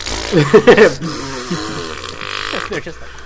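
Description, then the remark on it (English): A man's voice imitates someone with terrible diarrhea straining: a loud, wavering groaning burst at first, then quieter strained grunts and heavy, breathy exhales. “It just really heavy breathing.”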